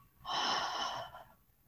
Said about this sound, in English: So we're going to breathe in through our nose and exhale through our mouth. Again, breathing in through our nose. Exhaling through our mouth.